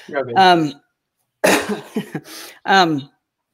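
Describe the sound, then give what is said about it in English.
A man's voice clears his throat a few times in short bursts, with brief pauses between them and a rough, noisy rasp mixed with voiced sounds. “Sorry, I keep clearing my throat.”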